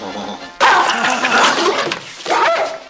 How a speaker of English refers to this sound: Does your dog bite? Nice dog.